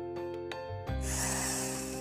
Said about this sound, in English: Or normally aapko aisi awaaz jaise abhi aapne suni drilling, carpenter jaise drill karte hain, wo awaaz mein aake bachcha aake kaan you know tight pakad le, means there is still sensitivity.